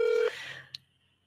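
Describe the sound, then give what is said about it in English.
A short, loud electronic telephone tone sounds once as a phone call is placed, like a dialing beep, then cuts off and is followed by a faint click and quiet line noise. “Let's see if we get her on the line.”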